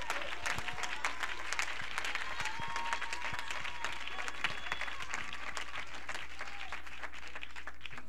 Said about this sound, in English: Clap your hands all across this building tonight.